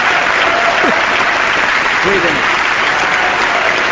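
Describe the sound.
A large audience gives a standing ovation during the State of the Union address, steady and loud for several seconds, a dense, unbroken wash of clapping with faint voices briefly rising beneath it.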